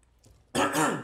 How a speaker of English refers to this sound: Sorry about that. I needed to clear my throat.